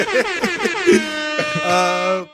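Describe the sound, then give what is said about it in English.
A loud air horn blares in a quick run of short, rhythmic blasts, then finishes with a couple of longer sustained honks, bright and brassy, with no talking over it. “go ahead and put air horns around that.”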